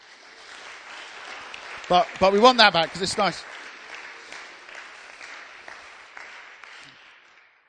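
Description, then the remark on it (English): An audience applauds in a steady, dense wash of clapping that lasts several seconds and then fades out. A man speaks briefly over the clapping near its start. “you've been amazing, and they're now going to give you a great round of applause.”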